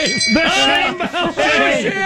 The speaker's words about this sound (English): Shame bell.